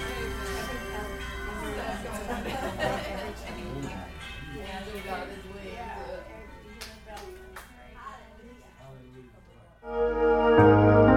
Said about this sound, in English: Angels ring some bells. Ring them all over the place. Ring them.